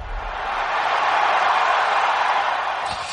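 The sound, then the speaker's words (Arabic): A steady, dense roar of a large stadium crowd, a broad wash of many voices that holds at an even loudness throughout with no single voice standing out. “كابتن خليل، شغلنا لك صوت الجمهور عشان تعيش أجواء الملاعب مثل أول.”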